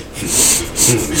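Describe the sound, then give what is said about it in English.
A voice imitates heavy breathing through the nose: two loud, hissy, airy pulses in a slow rhythm, each swelling and fading like a forceful sniffing exhale. “Just hear him breathing through his nose.”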